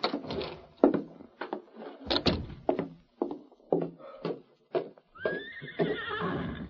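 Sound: horse neighing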